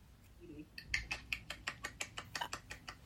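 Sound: one-handed clap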